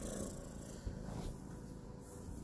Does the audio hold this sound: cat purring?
yes